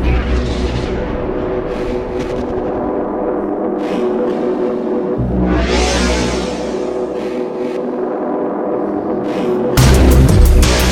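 An electronic music intro plays on its own: a dense, steady wash of synths over deep bass, with rising airy swells, and a louder, fuller section kicks in near the end.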